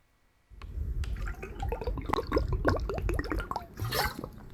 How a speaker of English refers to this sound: And let's go ahead and start off this whole program today with a water break.